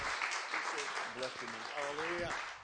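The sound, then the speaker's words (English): An audience at a church service applauds steadily as a preacher comes up to bring the Word of God, a dense wash of many hands clapping, while a man's voice speaks over the clapping partway through. “Well, let's give that clap offering to the one who really deserves it, and it sure isn't me.”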